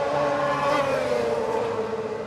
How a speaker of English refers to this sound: Currently, we've got the sidecar outfits going out on their warm-up lap before the second sidecar race.